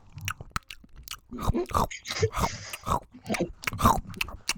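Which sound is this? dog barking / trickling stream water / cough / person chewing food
person chewing food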